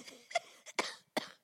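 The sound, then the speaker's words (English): Several short, dry coughs in a quick uneven burst, about four sharp hacks with brief pauses between them and no talking. “I'm going to try and keep my coughing to a minimum.”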